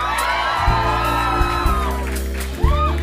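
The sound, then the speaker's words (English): A live crowd at an NPR event, one of the biggest crowds they have had, whoops and cheers loudly and continuously, with several high rising-and-falling whoops cutting through the roar of shouting voices. “I heard this was one of the biggest crowds they've ever had.”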